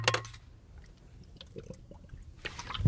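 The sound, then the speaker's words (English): Someone takes a drink of water: a brief slosh of liquid, then quiet gulps and small wet clicks, ending with a louder splash or thump, with no talking. “Hold on, water break.”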